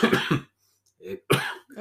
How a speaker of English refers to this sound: another coughing break.